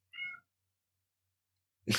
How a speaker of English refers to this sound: Was that a cat? Yeah, my cat. My wife's cat's going crazy.